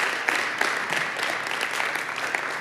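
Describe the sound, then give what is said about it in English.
A crowd applauds steadily in appreciation to God, many overlapping claps forming a dense, even wash of sound at moderate volume with no voices standing out. “Yeah, you can do a clap.”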